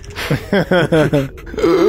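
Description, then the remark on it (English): A voice imitates a Grimlock's dying gasp: four strained, breathy groaning pulses in quick succession, fairly loud, trailing off into a final rasping exhale. “And yes, with one final gasp, the life leaves him.”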